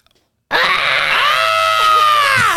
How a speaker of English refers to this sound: Wait, you gotta do it. You gotta do the scream.